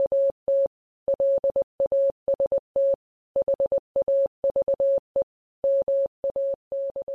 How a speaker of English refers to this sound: Assuming the transmission did go out in Morse code, Howard Carter's message probably sounded like this.